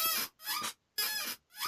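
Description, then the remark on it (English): An old computer chair squeaks loudly, four shrill, whiny creaks in a steady back-and-forth rhythm with brief silences between them, and no one talking. “The other gift that I got was a new computer chair. However, listen.”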